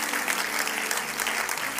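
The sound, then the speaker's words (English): An audience at a Wednesday night church service claps hands to praise the Lord, a steady, dense wash of applause, many overlapping claps blending into a continuous crackling roar at a fairly even loudness throughout. “Clap your hands to the Lord and give Him praise for His goodness and His blessing.”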